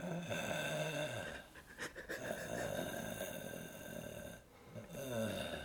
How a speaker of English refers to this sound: They can just listen, and you will hear her breathing.